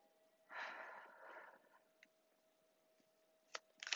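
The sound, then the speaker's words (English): A soft papery riffle of a Rider-Waite tarot deck being shuffled, lasting about a second, followed by a few quiet, sharp clicks and taps as the deck is squared. No one speaks. “I cannot guarantee that you will hear me shuffling the whole duration of this reading, but based off of faith, we will go from here.”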